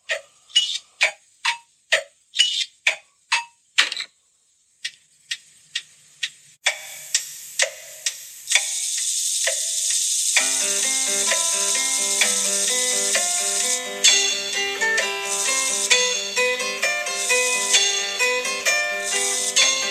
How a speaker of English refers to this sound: Here is the clock, the Trumpton clock, telling the time steadily, sensibly, never too quickly, never too slowly, telling the time for Trumpton.